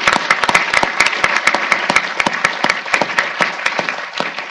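A steady burst of audience applause at a conference, welcoming the organisation's president, vice presidents and conference director: dense overlapping hand claps at a loud, even level that carries on without pause for several seconds, with no voices cutting through.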